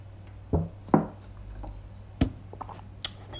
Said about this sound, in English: Excuse me here while I drink some water.